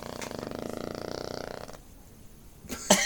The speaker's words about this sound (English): Did that spike? Yeah, the fart spiked on the mic. It's a very steady spike. Oh, that looks like a fart.